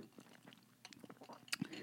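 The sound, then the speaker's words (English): Someone takes a quiet sip of coffee: soft wet mouth clicks and a small slurp, then a brief gulp near the end, with no talking. “And hold on, I'll take a sip of my coffee.”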